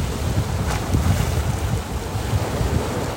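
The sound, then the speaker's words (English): Steady wind buffets the microphone over a low, rumbling wash of water as migrants line up and board a boat in a small coastal city in northwest Colombia, on the Gulf of Urabá; a continuous outdoor roar with no clear voices or distinct footsteps. “They line up and start boarding the boat.”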